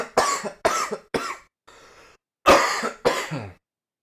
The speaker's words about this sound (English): Oh my god, I just realized I have cough drops right here, so I didn't mean to be, like, coughing my head off this whole time.